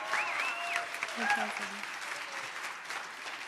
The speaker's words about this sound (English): 35th anniversary. Can we clap for them? That's a big deal.